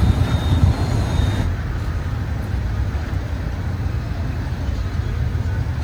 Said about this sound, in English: So here's another bus. We've got one bus in there already. Got this bus coming in now.